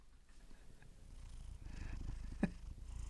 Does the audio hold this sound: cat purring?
yes